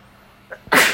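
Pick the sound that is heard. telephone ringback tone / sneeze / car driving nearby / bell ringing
sneeze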